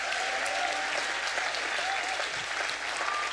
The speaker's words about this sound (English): Anybody believe that God can set some things in order and change things starting tonight? If you do, clap your hands and praise God.